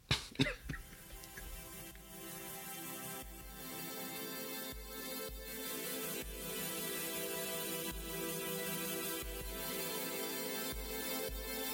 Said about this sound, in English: Should get started out with coughing.